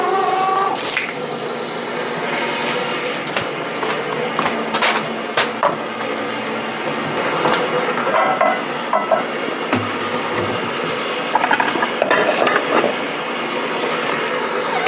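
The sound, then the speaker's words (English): A stand mixer with its paddle attachment locked in whirs steadily with a droning motor hum, joined by intermittent clicks and knocks as the paddle works through batter with eggs in it. No one speaks. “And I'm turning it on to let that start to mix.”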